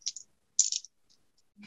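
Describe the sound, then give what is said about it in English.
Seven dice rolled for a tinker roll clatter in two short, bright bursts of rattling, followed by a few faint, scattered ticks as they settle, with a brief murmur of a voice at the very end. “Got 7 dice. What could possibly go wrong?”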